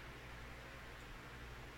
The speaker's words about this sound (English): A lot of white noise.